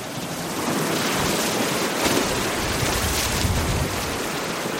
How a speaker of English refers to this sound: I watch the waves devour the beach and begin pounding the bluffs, cutting deep notches into the base. Then, one by one, the bluff faces slide off in whole sheets.